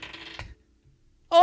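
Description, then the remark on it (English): Dice clatter and tumble across a hard surface for about half a second, then stop, as a roll of the day to pick a sports bet; after a short silence, a loud voice suddenly breaks in. “How about dice?”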